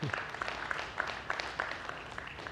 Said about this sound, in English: That's right, you can cheer.